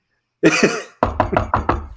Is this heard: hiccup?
no